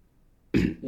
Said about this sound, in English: Oh, shit, now I'm burping. Ugh, excuse me.